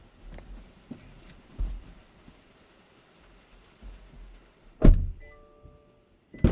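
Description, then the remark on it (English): Muffled clunks and shuffling movement inside a car as a person gets out of the back seat and back into the front seat, then a solid door slam, followed by a steady electronic warning chime and another thud at the end. “All right, so I'm just going to get out of the back seat and come back into the front.”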